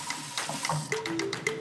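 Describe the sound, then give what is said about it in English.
Water runs from a faucet in a steady, hissing stream, broken by brief splashy bursts and a few faint tonal whines, with no one talking. The faucet is turned on as an experiment to test whether running water prevents tears while peeling. “Then I'm going to turn on the faucet.”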